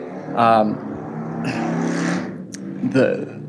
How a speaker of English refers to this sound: Did you hear the motorcycle? No worries.